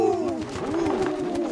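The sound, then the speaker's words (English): A parliament of owls gathered in a tower hoot over one another in a steady, overlapping chorus of soft, rounded calls, continuous throughout, with no talking. “I suppose all you chaps, owls I mean, know”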